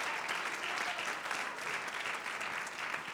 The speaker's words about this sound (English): If you believe that, would you just clap your hands unto the Lord right now?